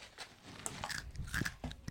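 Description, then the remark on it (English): Crisp bites into a spicy tortilla chip, a handful of sharp crunches and crackles in quick irregular succession, fairly loud against a quiet background with no talking. “Final crunch.”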